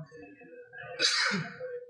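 A single sharp sneeze bursts out, a quick breathy intake followed by a bright, explosive hiss that fades within a second, with faint voices murmuring around it.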